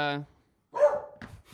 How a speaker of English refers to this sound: Okay, there's a lot of dogs in here today. It's a wild one here. Yeah, there's another dog outside there.